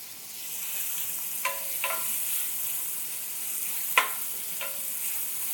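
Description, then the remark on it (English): Onion strips sizzle in a pan over medium-high heat with a steady, bright hiss, broken by four short scraping clinks of a utensil stirring them. No one speaks. “Go back to the medium high. I'm gonna add my onions.”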